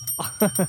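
An 'outrage bell' rings with a bright, sustained high tone lasting the whole moment, while a few short voiced sounds rise and fall underneath it.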